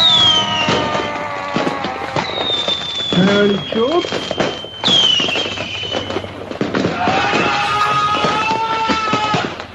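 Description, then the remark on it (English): Fireworks lit by the speaker go off in a steady barrage: high whistling rockets soar over dense crackling and popping bursts, loud, with voices faintly mixed in. “Fireworks! Happiness!”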